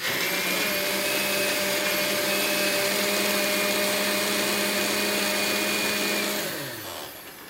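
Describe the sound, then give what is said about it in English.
A blender blending truffles, squid ink, mushroom stock and salt runs loud with a steady, whining motor roar, then spins down and fades near the end. No one speaks. “So in this blender right now, we have the truffles, we have the squid ink, we have the mushroom stock. We're going to add a little bit of salt to that. And we're going to bring it over to the blender.”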